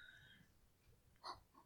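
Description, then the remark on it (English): A small dog, a long-haired chihuahua named Orzotini, held in a person's arms and breathing into a microphone: soft low huffing, then one short, sharper snuffling puff near the end. No one speaks. “Yeah, that was her breathing into the mic.”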